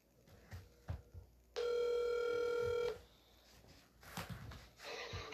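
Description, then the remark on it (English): A single loud, steady telephone ring tone sounds for about a second and a half as a call is placed, with faint rustling and handling noises around it. “So we're gonna get him on the phone.”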